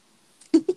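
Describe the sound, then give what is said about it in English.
A cat named Yoda gives two quick, short meows at a door, wanting to be let in, the first slightly louder, each a brief mid-pitched chirp with no talking around them. “Sorry, Yoda's yelling at my door. I'm going to let her in.”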